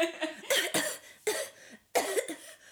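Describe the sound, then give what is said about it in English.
Someone deliberately puts on a theatrical, chesty consumptive cough: three or four harsh bursts in quick succession, fairly loud, with no talking. “Yes, perhaps you could chuck in a consumptive cough or two, or I could. I'm really good at those.”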